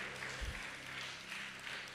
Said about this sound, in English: Somebody need to clap their hand and give him praise.